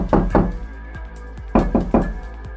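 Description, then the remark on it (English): Knocking on a door in two quick bursts: two loud raps, a short pause, then three more sharp knocks, with a low steady hum underneath and no one speaking. “Did you order for anything? No. Let me check who is there.”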